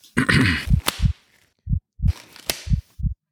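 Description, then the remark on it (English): A gruff throat-clearing leads into the sharp, whip-like snap of a latex glove being put on, followed after a pause by a second crisp snap, with soft low thumps scattered around each. “So if you just forgive me a second, I'm just going to clear my throat and get the latex gloves on.”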